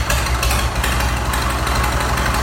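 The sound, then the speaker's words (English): An old car engine, recorded with the microphone really close, idles steadily, its low rumble layered with rapid, crunchy ticking and popping from the valves. The sound is loud and continuous, with no talking. “You can hear the valves popping.”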